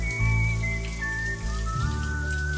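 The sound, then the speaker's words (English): Running shower water splashes steadily for a few seconds, blended with sustained tonal chimes that shift pitch twice, a short jingle for the KCMQ morning show's Top of the Hour Shower Thoughts segment. No one speaks. “It's the KCMQ Morning Shag's Top of the Hour Shower Thoughts.”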